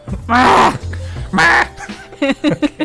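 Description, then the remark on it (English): A person imitates a bird's squawk with two loud, strained, harmonic-rich bursts, followed by a string of shorter, choppy squawking yelps that trail off. “Make a squawking sound.”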